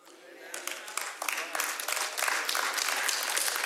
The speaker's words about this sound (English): If you're married and you're not clapping right now, you're in big trouble.